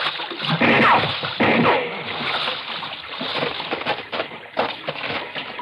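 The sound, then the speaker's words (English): Continuous sloshing and splashing as someone wades heavily through water carrying another person on their shoulder and climbs out, with uneven surges of churning water over several seconds. “Lay over on my shoulder and I'll carry you out of the water.”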